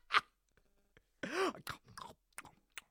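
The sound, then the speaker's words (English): A voice imitates a caveman chewing on sunflower seeds: a sharp crunchy click, then a loud grunting, groaning vocal burst with rising-falling pitch, followed by several short crackly smacks and clicks. “That's my caveman chewing on sunflower seeds sound, by the way.”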